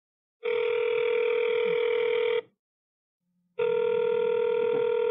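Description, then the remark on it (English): A telephone rings twice, each ring a steady, buzzy electronic tone lasting about two seconds, with a short silent gap between them. The rings are fairly loud, and no one speaks. “Pick up the phone.”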